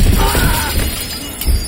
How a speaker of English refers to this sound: I landed on Sierra's vanity, the mirror shattering, showering me with shards of glass